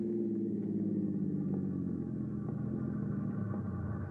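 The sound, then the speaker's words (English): A distant train, the 704, approaching a train crossing on the outskirts of town, rumbles steadily, a low, continuous mechanical drone with a faint engine hum that holds at a constant level throughout. No voices are heard. “As you near the train crossing, you hear it in the distance.”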